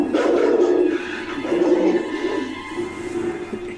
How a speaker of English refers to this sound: That dog is not happy.